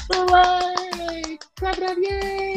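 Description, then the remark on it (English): Brisk, steady clapping with sharp rapid hits, layered over a sustained buzzing tone. It breaks off briefly midway, then resumes at the same pace. “Hooray! Clap it up, yay!”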